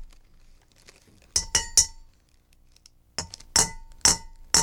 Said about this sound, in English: Sounds like me trying to put away my mom's wine glasses. Oh, my God! It's wine glasses clinking! Like when you're carrying them from the dishwasher.